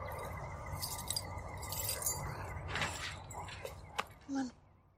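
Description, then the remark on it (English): Work keys jangle and clink in several short metallic bursts over a low background hum with faint murmuring voices. “Do you still have your work keys?”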